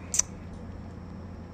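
A quick, sharp double click of a computer mouse near the start as links are clicked, then only a low steady room hum for the rest.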